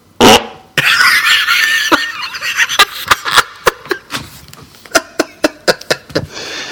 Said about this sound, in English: Okay, can I do a live fart? Yeah, totally. That'd be so sweet.